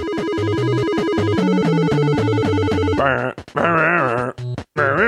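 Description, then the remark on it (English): Chiptune-style Balloon Fight video game music with a bouncing, stepping bass line under bright buzzy melody tones, turning into warbling, choppy synth notes with short abrupt gaps, like a clumsy remix. “Do you like my remix?”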